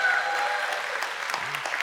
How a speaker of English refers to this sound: He did the slow clap, and just like in the movies, everybody got on board.